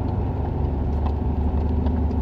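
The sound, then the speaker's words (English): A car engine idles out in the middle of nowhere with a continuous low, throbbing rumble that stays at an even, fairly loud level throughout, with no voices. “It is a little weird that there's like a car out here in the middle of nowhere.”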